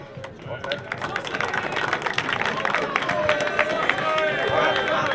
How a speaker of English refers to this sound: I'd like to just thank Connacht GAA for the use of their facilities today. Like, it's in savage shape all year round, so just a round of applause for them as well, please.